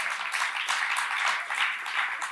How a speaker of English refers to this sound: Thank you, Jesus. He deserves a clap, yes.